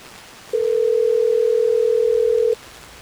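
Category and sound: signal or alarm, telephone call ringing out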